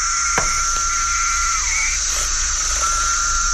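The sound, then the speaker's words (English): A dense chorus of periodic cicadas (Brood X, the 17-year brood) drones steadily throughout, a loud, unbroken high-pitched buzz with a lower whirring layer beneath it and no voices. “And then there are the cicadas.”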